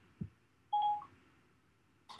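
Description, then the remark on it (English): A smartphone being unlocked to open an app gives a short electronic keypad tone, a clear steady beep lasting a fraction of a second, with a soft tap just before it and another brief click-like tone at the end. No talking. “Now, sometimes the phone will tell you there's measurements available, but most of the time what I would do is go into the Thermo app, and I'll unlock my phone, and let's see.”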